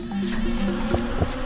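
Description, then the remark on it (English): A steady insect buzz drones continuously, its pitch wavering slightly, made by a small flying creature that looks like a mosquito but is not one, with no voices present. “It looked like a mosquito, but definitely wasn't.”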